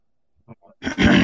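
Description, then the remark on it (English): A person growls a couple of short, low grunts, then bursts into a loud, sustained ogre roar, mimicking Shrek. “he let gives out an ogre roar.”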